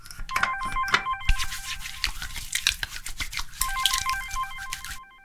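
A mobile phone in an office rings with a repeating electronic ringtone in two bursts, an incoming call from a mother, mixed with clattering, busy background noise, before cutting off abruptly as the call is answered.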